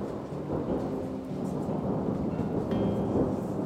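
Distant thunder rumbles low and continuously during a storm with bright lightning flashes lighting up the sky, a deep rolling roar that swells slightly toward the end, with a soft wash of rain hissing underneath. No voices.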